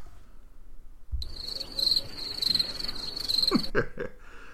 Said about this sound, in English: Play that cricket shit, bro.